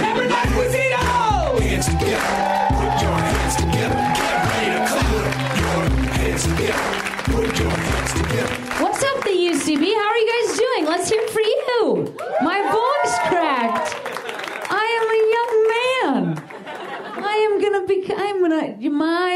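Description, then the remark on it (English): A loud crowd at the UCB claps and cheers over walk-on music for the first half as the host is introduced, then excited whoops and shouting voices carry on steadily as the applause continues. “Put your please clap yourself up and please put your hands together to your host.”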